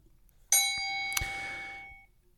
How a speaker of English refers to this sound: So next up is, wait, did I ding the bell? Hold on.